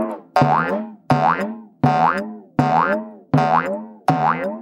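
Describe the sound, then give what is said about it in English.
Six springy boings of Gnesi's pogo stick bounce beneath a window in a steady rhythm, growing louder, each starting sharply with a twangy, wobbling pitch that rises and then fades before the next, with no voices. “As I stuck my tongue out at Gunafina's glossy image, a boinging sound beneath the window, possibly that of an unlicensed fugitive kangaroo, or more likely, Gnesi's pogo stick, grew louder by the second.”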